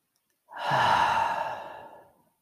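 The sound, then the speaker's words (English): A single slow, deep breath, drawn out for about two seconds as a soft, airy whoosh that swells quickly and then gradually fades, with no talking. “Can begin our breathing.”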